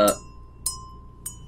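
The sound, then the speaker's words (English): A guard bell rings three times in a steady rhythm, the first strike loudest, each bright metallic tone lingering briefly before the next over a low background murmur. “And ring the goddamn guard bell that any trained guard, say Bruce, would recognize.”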